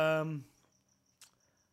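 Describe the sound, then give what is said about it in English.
A loud cricket chirps in a steady, evenly spaced high-pitched rhythm, picked up by a microphone, clear in the quiet after a brief voice at the start, with one short noisy click partway through. “Damn, they could hear the cricket on the mic.”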